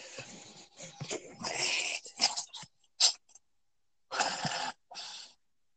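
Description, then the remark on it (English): A dog makes a string of odd, wheezy grunts and snorting huffs while its belly is rubbed, in irregular bursts separated by short silences. “This is a dog. Belly's being rubbed.”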